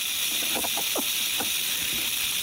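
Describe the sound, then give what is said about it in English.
A rattlesnake's tail rattles in a steady, dry, high buzz that never lets up, fairly loud, with a few faint brief chirps underneath. “It is a rattlesnake.”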